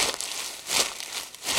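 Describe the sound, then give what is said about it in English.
Crunched half-inch magnetic tape rustles and crackles like dry leaves, a hissy, bright texture that swells in three soft surges, with no voices. “And the half-inch tape sounds more like leaves.”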